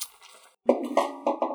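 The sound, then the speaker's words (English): Dice clatter and tumble across a hard tabletop after a brief pause, several quick rattling knocks before they settle, with no voices. The dice are rolled for a grit roll. “can you make a grit roll for me? Yes, if I had my dice out.”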